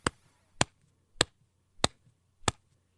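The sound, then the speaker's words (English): Five crisp, bright snaps, each layered with a dull low thump in a version of the classic WorldStarHipHop sound effect, land at an even pace about half a second apart, with quiet gaps between and no voices. “You hear this like mm-hmm. bright snap, and then we'll add in like a thump.”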